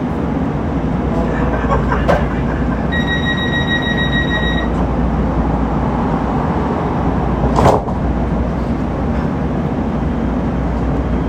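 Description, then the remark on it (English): A Metro A Line (Blue) light rail train bound for 7th Street running, heard from inside: a steady, loud low rumble throughout, with a brief burst of high electronic tones early on and a couple of sharp clunks. “Welcome aboard the Metro A Line Blue. This train's final destination is 7th Street.”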